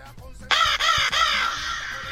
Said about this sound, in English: All right, here's the raven.